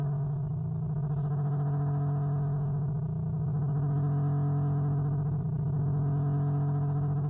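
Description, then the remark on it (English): A continuous warbling electronic tone with wavering, layered pitches that resemble orca calls, sustained steadily and fairly loud for several seconds with no voices. “Okay, now it sounds like a mechanical orca has swum up next to me and is trying to communicate in her alien language.”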